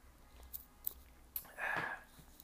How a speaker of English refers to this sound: I had to take a sip on that. Matter of fact, let me go on and finish this cup.